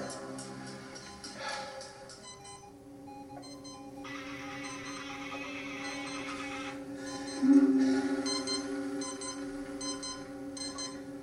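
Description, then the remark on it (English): An electronic alarm in a film beeps over and over in a quick, steady pattern, fairly loud, with a low hum and a burst of hissing noise in the background partway through. “I love how little sounds in this bitch become so annoying. Yeah. Like a fucking alarm clock. It's like that alarm”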